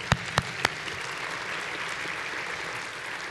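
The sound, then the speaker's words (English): A church audience, standing, applauds steadily as a clap offering to the Lord, a dense wash of many hands clapping at once, with a few sharper, louder claps standing out near the start. “Would you stand to your feet, put your hands together, and let's give the Lord a clap offering.”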